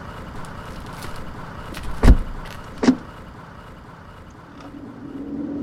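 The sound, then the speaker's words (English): Two solid car door slams, close together, then an engine hums to life and the car begins pulling away, its low rumble rising steadily toward the end. “Get in the fucking car.”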